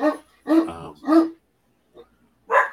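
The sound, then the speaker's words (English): Dogs barking: three sharp barks in quick succession, a short pause, then one more bark. The barks are fairly loud and clear, with no talking over them. “Dogs in the background.”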